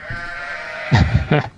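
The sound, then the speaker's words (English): Two short, wavering bleats from a baby sheep in quick succession, fairly loud, rising out of a quiet, steady background hum. “Sheep baby.”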